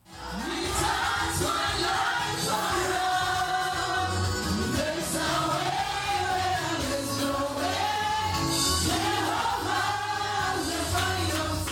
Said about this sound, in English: Of course, the worship music was really powerful. I took a little video from my phone. Check this out.